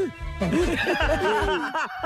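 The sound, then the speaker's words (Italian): A man's voice imitates monkey chatter, a rapid string of excited, squeaky hoots and shrieks rising and falling for about two seconds. “Con la scimmia.”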